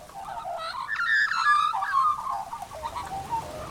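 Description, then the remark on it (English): A black-backed magpie calls from a gum tree on a promontory with a rich, warbling carol of fluty, gurgling notes, swelling loudest in the middle and trailing off into softer phrases, heard alone. “That's the call of a black-backed magpie.”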